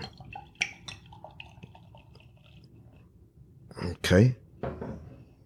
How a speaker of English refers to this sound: And so let's pour it into the glass and maybe something will happen there.